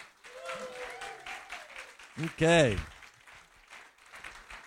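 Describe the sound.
Steady crowd applause crackles throughout as guest friends are welcomed, with a loud rising cheer bursting out midway and a voice speaking briefly over the clapping.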